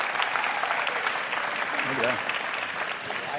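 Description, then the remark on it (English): A room full of people claps steadily and warmly for a few seconds for a newly hired adult ministries pastor called on stage, a dense, even patter of applause, with a brief voice rising through it midway. “They didn't clap for me on my first day either, so.”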